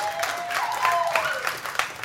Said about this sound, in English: First off, before we jump straight into it, big hand of applause,